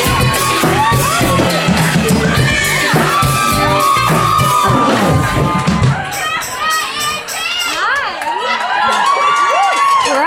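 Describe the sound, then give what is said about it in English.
A live show audience cheers and claps loudly for several seconds as guest Andi Dorfman, a former Bachelorette contestant and best-selling author, is introduced, then the applause thins out, leaving scattered high whoops and shouts from individuals in the crowd. “Give it up for Andi Dorfman, everybody!”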